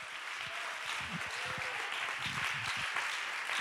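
A crowd claps their hands together as praise to God, in a steady, dense wash of applause that holds at an even level throughout, with no voices standing out above it.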